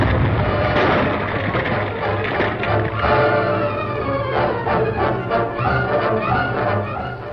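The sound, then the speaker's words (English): A loud, sustained explosion rumbles and crackles for several seconds, a dense wall of roaring noise with scattered debris-like crashes, with no voices. “The explosion had meant instant death for the desperate outlaw and painful injuries for Sheriff King”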